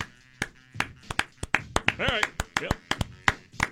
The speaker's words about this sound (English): All right. Yep. We'll clap it up.